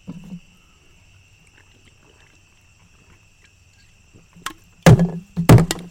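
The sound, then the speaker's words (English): After several quiet seconds with a faint steady hum, a few loud, thumping gulps of someone chugging beer break out near the end, coming in quick uneven bursts. “Maybe go to a lake or something. Beer chugs.”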